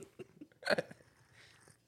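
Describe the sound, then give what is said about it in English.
A voice mimics a slurping sip while taking a sip of a drink during a taste test: a few soft wet clicks, then one sharp, breathy burst of sucking noise, trailing off into a faint airy hiss. No words are spoken. “We need the slurping sound effects and all.”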